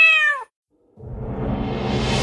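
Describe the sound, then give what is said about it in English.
A single short, clear cat meow with a falling pitch, followed by a brief silence and then a loud rising whoosh of noise. “My cats have a lot of questions, and I do try to answer them.”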